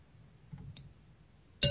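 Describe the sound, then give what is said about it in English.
A single bright glass clink rings out at the end, sharp and loud with a shimmering high tone. Before it there is only a faint low hum and one tiny tick. “Ooh, I like the little cling of the glass.”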